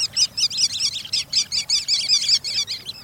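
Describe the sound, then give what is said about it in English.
A flock of sanderlings, tiny sandpipers, on a beach gives rapid, high chirping calls, a steady chattering of short twittering notes over a low rumble of surf. “Though most birds that enliven beaches in summer have gone south, tiny sandpipers called sanderlings are easy to find on winter shores.”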